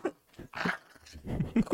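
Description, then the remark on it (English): A dog fighting over a ball growls and grumbles in a few short, uneven bursts, the rough throaty sounds rising and falling over under two seconds with no one talking. “if you can hear you growling, I stopped fighting for a ball”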